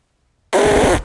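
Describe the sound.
A voice imitates a fart with a single loud, buzzy half-second blurt that cuts off abruptly after a moment of silence.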